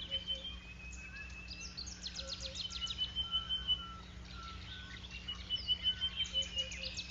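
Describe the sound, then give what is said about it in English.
A superb starling gives repeated shrill alarm calls, warning of danger on the ground, over a steady background hum. Sharp chirping bursts and thin high whistles sound several times, like a harsh alarm call. “The bird shrieks a warning, shh, danger on the ground, and the monkeys repeat it using their own term, and everyone runs for it.”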